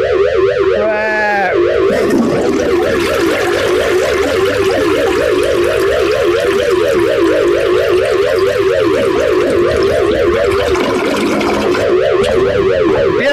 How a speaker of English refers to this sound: The collision proximity alarm is summoned.